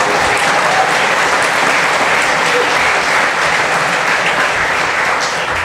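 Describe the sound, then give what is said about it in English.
A crowd applauds steadily, many hands clapping in a dense, even roar that stays loud and unbroken for several seconds, with no voices standing out above it. “I'm very lucky to have them, and that does deserve a clap.”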